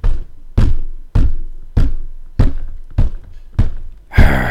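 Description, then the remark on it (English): Heavy construction banging during a recording session: about seven loud thumps at a steady, deliberate pace, each ringing out briefly, ending with a sharper, clattering whack. “I hate when they do construction during our recording sessions.”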